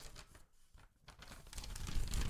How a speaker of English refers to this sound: People love to hear the paper. We get lots of fans writing in. Mostly they're just saying, when are you going to tear that paper up and then quit trying?